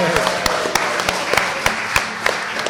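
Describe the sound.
An audience applauds and cheers for a cast member's cameo, with sharp, scattered claps rising out of a steady wash of crowd noise and murmuring voices, loud and irregular for a few seconds.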